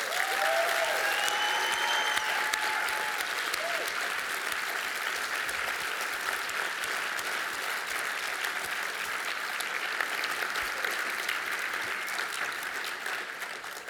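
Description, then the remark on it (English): Sustained audience applause for Cliff Curtis, a dense, steady patter of many hands clapping at even loudness for the whole stretch, with a few brief whistles near the start and no talking. “So, ladies and gentlemen, let's give an awesome big round of applause for Cliff Curtis.”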